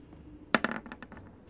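Dice clatter onto a hard table: a sharp first strike followed by a quick, tapering run of small rattling clicks that settle within about a second. Fairly loud, with no voices.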